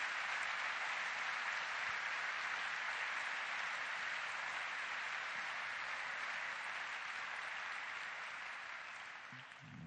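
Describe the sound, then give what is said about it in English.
A crowd applauds the senior folks present steadily for the full ten seconds, a dense, even wash of clapping hands that stays loud throughout and eases off slightly at the very end. No one speaks. “More senior folks here, take that applause spontaneously from us as a very real affirmation of you and of your value.”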